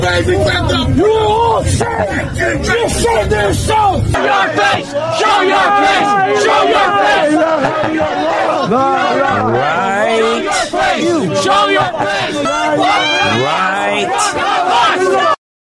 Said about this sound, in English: A lot of screaming. Everybody's yelling and screaming, but there it is. The pro-Hamas terrorists in New York covering their faces.